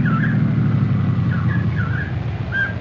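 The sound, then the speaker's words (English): A state policeman's car approaches, its engine rumbling steadily and fairly loudly, with a few brief high squeaky chirps riding above the low drone. No one speaks. “Oh, hey, I hear a car coming.”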